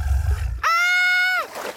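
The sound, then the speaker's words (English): A crocodile lurking in a city canal growls, starting as a low rumble and rising into a loud, sustained, tonal roar that holds steady for under a second before cutting off. No one speaks. “Oh no, I won't be able to rescue you with that crocodile lurking around.”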